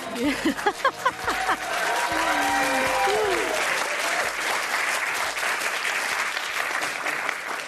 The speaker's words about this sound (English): Oh my gosh, I think I'm already going to cry. It's been so long since we've heard some real claps.